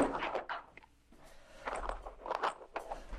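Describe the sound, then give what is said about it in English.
A person scoots a chair across the floor toward someone in several rough, scuffing bursts with a brief pause in between, moderately loud. “I'm going to scoot my chair over towards you.”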